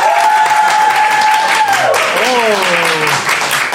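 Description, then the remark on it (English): Steady applause from an audience fills the whole moment, dense and loud, with a few voices whooping and a sliding whistle-like cheer rising over the clapping, as the audience applauds to vote for the T-1000 as the new Santa Claus. “So please applaud if you think it should be the T-1000.”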